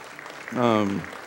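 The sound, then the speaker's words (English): An audience at First Baptist Church Ozark claps in a steady, dense patter while a single voice rings out loudly over the applause for about half a second. “You can clap again.”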